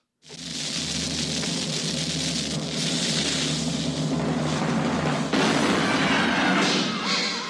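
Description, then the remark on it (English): A cannon-firing sound effect: an abrupt loud blast that swells into a long, steady rushing roar over a low rumble, with a second surge of noise toward the end. No one speaks. “hear the cannon noise and imagine this episode flying off into oblivion”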